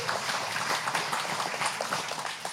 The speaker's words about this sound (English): We're picking this bus up this week. This bus was purchased for us for this school 2 weeks ago, so we're picking that up this week and having here. You can clap for that